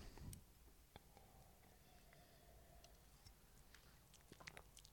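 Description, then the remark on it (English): Someone quietly sips wine, with soft wet mouth clicks and small smacking sounds scattered over a few seconds and a faint, brief slurp near the start. No one speaks. “But first, let me have this sip of reading wine.”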